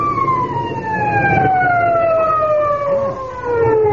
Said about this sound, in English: Must be an awful big fire someplace, though, even if we couldn't find it. Hey, you know what? I can still hear them sirens. Listen.